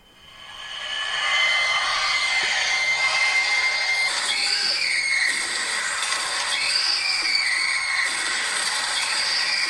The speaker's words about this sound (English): It's the same scream, just sped up.